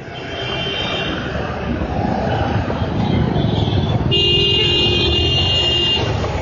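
Steady roar of busy road traffic, with a sustained car horn blaring for a couple of seconds near the end over the constant rumble.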